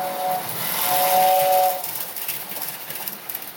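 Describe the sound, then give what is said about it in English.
The steam whistle of a Lionel toy train set, played downstairs at home, blows twice, a short toot then a longer one, over a steady airy hiss that keeps going after the whistle stops. “Yeah, I mean, 37 years old and I'm downstairs with a Lionel train set.”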